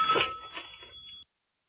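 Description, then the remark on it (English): A telephone rings once with a bright, steady electronic trill lasting just over a second, then cuts off abruptly into silence. No voices are heard. “She's going to be calling me up on the phone, and it'll be like, oh, look, one of your moms is calling on the phone.”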